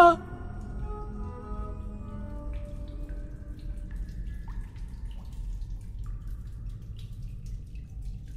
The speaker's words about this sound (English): Endless silence, except for the dripping water.